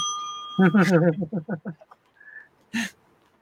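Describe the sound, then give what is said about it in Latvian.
A small bell rings at the start to close an auction bid for a Dell E7450, its bright tone lingering briefly before a person starts speaking, followed by a short whistle-like tone and a sharp breath. “tu līdz tās būs zvaniņš, Anijai uzmanīgi ar austiņām”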